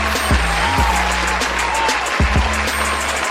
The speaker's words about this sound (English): Oh, fans, your warm riveting applause and your blushing smiles and ever-so-growing excitement is what carries me forward into this grand world of anime and actually life.